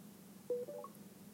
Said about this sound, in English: So, as I was saying, it'll give a beeping noise, and the faster it beeps, the closer you are to the barcode. And the slower it beeps, the further away you are